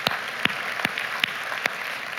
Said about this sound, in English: Over 40 people got dunked under the water, I heard, which is phenomenal. I'll tell y'all, yeah, that's worth clapping for.